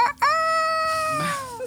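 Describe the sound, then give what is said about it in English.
A single loud rooster crow: a brief opening note, then a long, bright, held cry that slides down slightly at the end, with no talking. “The sound of a rooster crowing lights up on Trisha.”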